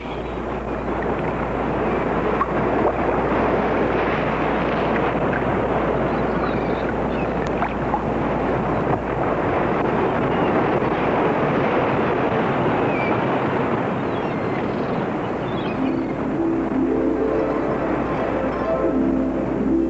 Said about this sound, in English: He drank strange fruit juice, ate some fish, and when his meal was over, lay back on his bed and fell asleep, lulled by the pounding of the waves upon the shore.